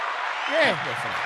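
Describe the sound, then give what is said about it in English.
A steady wash of clapping from two men sitting on a porch runs through the whole moment, with a brief rising and falling vocal sound, like a cheer or exclamation, cutting through the middle. “We're going to clap it up for that.”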